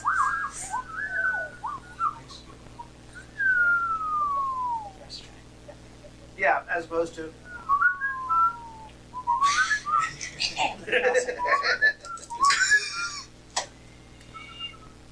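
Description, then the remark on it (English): A person tries to whistle while breathing in, producing thin, wavering, sliding tones in a few short bursts, with people talking and laughing between and over the attempts. “Whistling on an inhale like I did”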